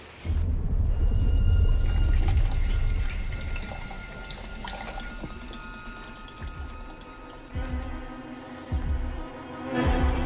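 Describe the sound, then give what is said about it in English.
Formaldehyde pours and splashes into a sink in a scene from the 2006 film The Host, loud at first, then easing into softer trickling and gurgles with a few brief surges near the end; no voices. “Dirty formaldehyde. Pour him into the sink.”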